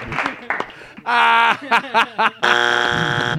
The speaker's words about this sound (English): Sorry, our buzzer fucked up.